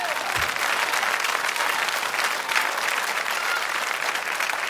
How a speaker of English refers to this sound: Somebody ought to clap their hands and praise Him.